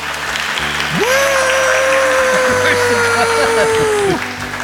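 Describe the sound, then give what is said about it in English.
Loud, dense audience applause fills the whole stretch, a steady crackling roar of many hands, with a long sustained whistle-like tone held over it for a few seconds. “Give us an audience clap. Here's the clap.”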